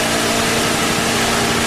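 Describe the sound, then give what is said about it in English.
An engine, presented as the chaoticradio.com traffic helicopter, runs loudly and steadily after being cranked, with the pump primed and the choke pulled: a continuous rumbling roar with a low humming drone and no pauses or voices. “Crank her up. Get the gas. Here we go. Prime the pump. Choke.”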